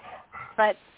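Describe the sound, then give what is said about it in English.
An old dog walking behind a person breathes heavily, rough wheezy exhales ending in a louder, brief voiced snort or whine, with no talking. “He's old and breathes heavy, so my apologies.”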